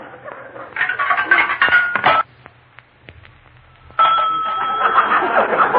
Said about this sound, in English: A payphone in a private house. That's the darnest thing I ever heard of.